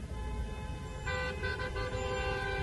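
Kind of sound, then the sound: vehicle, car horns honking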